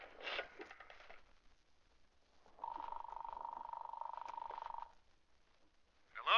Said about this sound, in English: I'll phone him right now. I remember his home phone number. Oh, I do hope he's home.